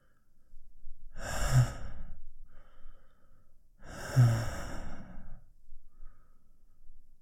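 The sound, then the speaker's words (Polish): Two long, breathy exhalations a few seconds apart, with softer breaths in between; no talking, just someone lightly panting. “lekko dyszy.”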